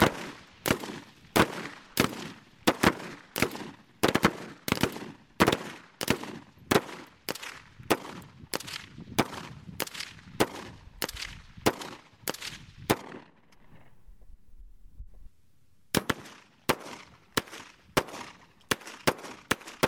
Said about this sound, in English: This is a portion of Raven Chacon's composition Report, scored for a group of 8 people shooting various guns.